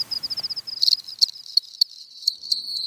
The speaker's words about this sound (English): So you go outside at night and you listen for cricket song. You do have to know what they sound like. And of course, each species has its own song.